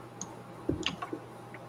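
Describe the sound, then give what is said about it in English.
Small hard objects clack and tick together in a brief cluster of quiet clicks, like dice being rummaged through and sorted by hand to find a six-sided die, with no voices. “Where are my dice? D6. Nope, wrong one. There it is.”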